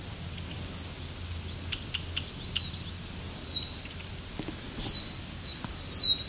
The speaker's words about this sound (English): There's a nice loud swamp sparrow.